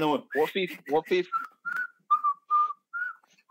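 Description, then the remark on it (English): A person whistles a catchy pop melody, a tune featured in FIFA 23, in a string of short, clear notes, right after a brief burst of speech. The whistling is moderately loud. “Whistling tune. Yeah. I was whistling.”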